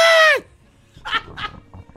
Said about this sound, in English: in a perfect Wilhelm scream